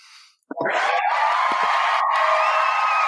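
A sudden burst of applause mixed with loud cheering and whoops starts after a brief quiet moment and stays steady and strong to the end.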